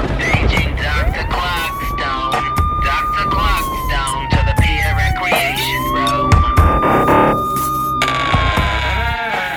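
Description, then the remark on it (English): A loud alarm siren wails, its tone sliding up, holding, then dipping before rising again in two long sweeps over a busy, noisy background with some voices. “Sound the alarm!”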